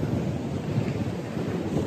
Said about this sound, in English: We let them fade away to the sound of the ocean waves. We let them wash away.